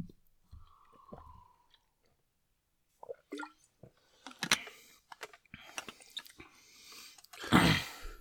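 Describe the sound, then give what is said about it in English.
Someone takes a few sips of water, with wet mouth clicks, a faint slurp and soft swallowing sounds, then a louder clunk as the drink is set down. “I'm going to have a sip of my water and just keep podcasting.”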